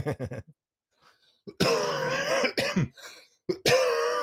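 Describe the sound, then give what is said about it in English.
A loud bout of harsh coughing from a person who has had a bad cough for the past couple of days: a few quick throaty hacks, a brief pause, then several heavy, raspy coughs in quick succession. No one speaks. “I've just had a bad cough the past couple of days, but I feel fine.”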